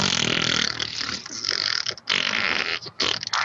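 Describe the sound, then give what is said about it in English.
A person blows loud, sputtering fart noises with their mouth, a buzzing, wet raspberry that runs almost continuously with a couple of brief breaks before starting up again. “Yeah, it wouldn't be an episode without you making a lot of fart noises endlessly.”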